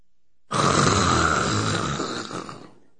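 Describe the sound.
A voice imitates loud snoring: one long, raspy, rattling snore lasting a couple of seconds, steady and rough before trailing off.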